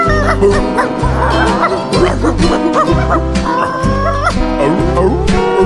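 A dog barks and yips repeatedly over steady, rhythmic music with a pulsing bass line, the barks loud and mixed in with the instruments.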